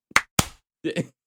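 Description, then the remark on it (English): A slow clap: a few loud, sharp hand claps spaced well apart, with a short muffled vocal sound between the later claps. “Again, slow clap”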